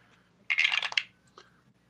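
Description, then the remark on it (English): Dice clatter across a tabletop in a quick half-second burst of rattling ticks, rolled for damage after a critical hit in a tabletop role-playing game, followed by one faint click as they come to rest. Fairly quiet, with no talking. “Roll your damage dice twice rather than doubling in case you get a lousy roll.”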